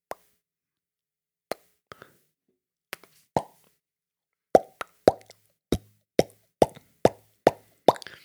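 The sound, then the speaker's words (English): A voice imitates a fish with a series of wet mouth plops, sparse at first, then about a dozen sharp pops in a quick, fairly steady rhythm, each short and bright, with no talking. “Here's my fish impression.”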